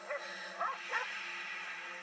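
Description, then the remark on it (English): A dog gives a few short, high yips and whimpers in quick succession, fairly faint against a steady low background hum, with no one talking. “Bad dog giving away our little secret like that.”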